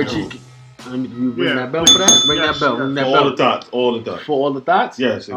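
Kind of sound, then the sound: signal or alarm, bell ringing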